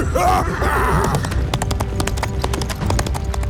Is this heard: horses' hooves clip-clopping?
yes